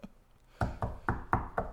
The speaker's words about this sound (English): Dude, can I just knock?